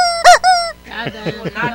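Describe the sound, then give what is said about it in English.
A rubber chicken toy squawks loudly twice in quick succession, then lets out a run of shorter, strained honking squeaks that fade slightly, alone with no talking. “Rubber chicken agrees.”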